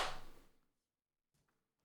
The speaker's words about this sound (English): And then we'll clap sync in 3, 2, 1.